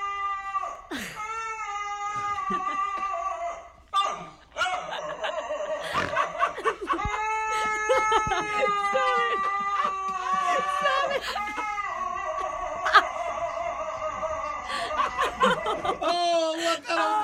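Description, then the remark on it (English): A dog howls in long, wavering, strongly harmonic bursts that rise and sag like a croaky old man's groaning voice, repeating for several seconds with brief breaths between them. “Let's hear the sound of a dog who, when he howls, sounds like an old man is trapped inside of him.”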